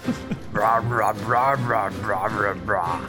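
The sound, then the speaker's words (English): A person imitates a dog barking with six quick, evenly spaced voiced yaps in a steady rhythm, fairly loud, with no other talking. “His bark.”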